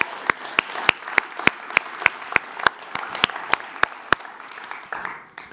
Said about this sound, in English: Well, let's give the worship team a round of applause, man. We are worshiping, man.